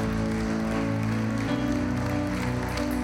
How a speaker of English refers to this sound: Come on, give him a hand, clap of praise in this house.